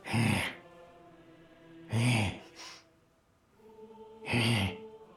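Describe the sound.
A voice imitates heavy breathing: three loud, breathy, slightly voiced exhales spaced evenly about two seconds apart, with quiet pauses between and no talking.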